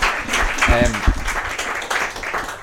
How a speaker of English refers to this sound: Guys, can we give a little bit of a round of applause